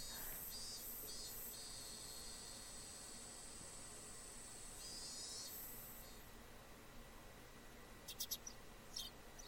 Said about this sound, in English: The chirping of birds served as my alarm clock.